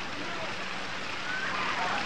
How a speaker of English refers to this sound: Yes, it's raining.